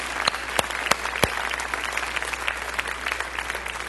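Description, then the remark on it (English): An audience at a church campus applauds steadily for the 2017 Myanmar Missions Trip Team, a dense wash of many hands clapping, with a few sharp, louder individual claps standing out near the start. “Let's all give them a big hand clap wherever you're at our campuses.”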